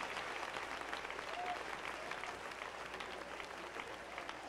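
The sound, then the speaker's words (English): An audience claps their hands in steady, dense applause, many overlapping claps forming a continuous crackling wash that holds at an even level throughout. “Somebody clap your hands one more time.”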